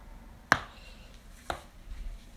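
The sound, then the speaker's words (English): A pencil flicked against a table twice, making two sharp, dry taps about a second apart, the first louder than the second, with only faint background noise between them. “I'm just flicking the pencil on the table.”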